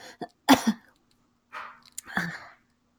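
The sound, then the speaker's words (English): Several short, harsh coughs, a sharp burst followed by a throaty rasp, then after a pause a softer breathy exhale and one more rough, throat-clearing cough, from a person with a mild cough that tickles the back of the throat. “There's a cough and it's there. But it's not bad.”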